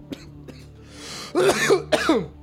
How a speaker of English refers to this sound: Do you think God is, like, smiling down on a man choking? I'm not joking, I'm coughing. I'm coughing, I'm not joking, okay? This is my coughing face.